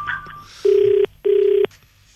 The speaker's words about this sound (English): She's calling me now. Okay, don't answer. Don't answer the phone. Don't answer. Okay.